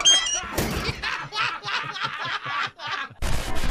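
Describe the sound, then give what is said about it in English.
A door shuts with a solid thunk, and a second heavy bump lands near the end, while a rhythmic, snickering laugh fills the stretch between them. “Let me just close the door.”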